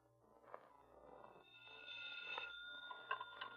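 A telephone rings with a bright, trilling bell that starts partway through after some soft handling noise, fairly quiet and heard on its own with no talking.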